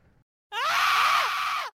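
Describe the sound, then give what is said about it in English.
A sudden, loud burst of overlapping high-pitched screams of fright from more than one voice, sustained for just over a second before cutting off abruptly, following a brief faint sound. “She opens the email, and suddenly they scream.”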